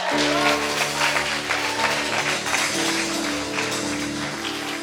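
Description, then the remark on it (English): A crowd claps for Jesus steadily for several seconds, a dense, continuous patter of many hands over sustained low organ-like chords that hold throughout. “Clap for Jesus.”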